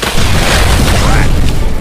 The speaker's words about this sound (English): The gully washer rainstorm a few hours ago washed away some of the soil from the roots of the trees holding the cable, and the soil left was softened by the rain. Almost without warning, the cable pulled the two trees down.